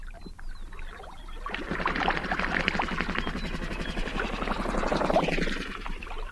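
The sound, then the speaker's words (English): Birds in, around and above a migratory watering hole near Crescent Lake National Wildlife Refuge in Nebraska, recorded by Lang Elliott and Ted Mack: a dense chorus of many birds calling over one another, with busy chattering and scattered higher whistles, swelling loudly after a quieter opening and holding steady throughout; no one speaks. “That's the name Lang Elliott and Ted Mack gave this recording they made of birds in, around, and above a migratory watering hole near Crescent Lake National Wildlife Refuge in Nebraska.”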